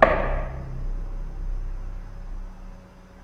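A single loud knock at the very start, a sharp thud that fades within half a second, followed by quiet low hum with no talking.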